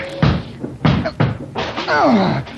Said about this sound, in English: I'm going to break this door down. Oh, it's pretty solid.